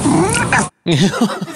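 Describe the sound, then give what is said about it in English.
A male cat yowls loudly in two drawn-out, wavering bursts separated by a brief silence, the second cry rising and falling in pitch. “I mean, listen to how, it almost sounds like a lion.”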